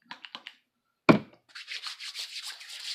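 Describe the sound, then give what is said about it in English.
A few quick light taps, then a sharp pump or squirt of hand sanitizer, followed by steady, hissy rubbing of the sanitizer into hands that continues in uneven strokes to the end. No one speaks. “This episode is brought to you by hand sanitizer.”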